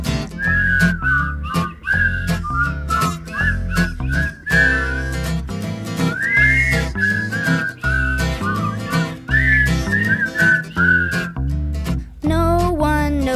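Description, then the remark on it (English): A person whistles a bright, bouncy tune, the melody rising and falling in clear, steady phrases over a rhythmic musical accompaniment, loud throughout. “I can whistle a tune.”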